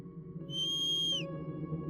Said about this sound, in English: And as soon as you whistle